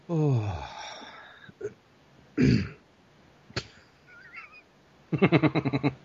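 Someone clears their throat up close: a few short, rough bursts separated by pauses, ending in a harsh, pulsing rasp. No words are spoken.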